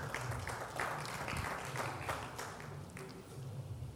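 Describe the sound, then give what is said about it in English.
A crowd clapping together in a steady, dense patter of applause that holds a fairly even loudness for a few seconds, with no clear speech over it. “Clap for her so she will tell us what that sound means.”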